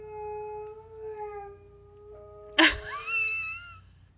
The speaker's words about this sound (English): That was your dog, for sure. I think he had a really weird dream.